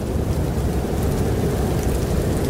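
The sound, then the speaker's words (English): A steady, dense wash of heavy rain with a deep, continuous rumble underneath from a raging thunderstorm, holding an even loudness throughout with no voices. “I love that the storm is raging as you're doing this.”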